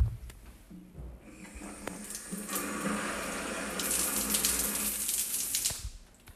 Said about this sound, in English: I just finished my shower and I'm awake again, which is nice.